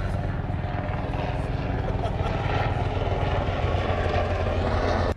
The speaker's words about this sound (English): a helicopter is trying to ruin this podcast.